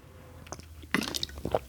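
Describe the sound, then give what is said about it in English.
Someone sips water, with a few wet mouth clicks and slurping swallows in quick succession, quiet and with no talking. “And I'm trying to drink some water like this.”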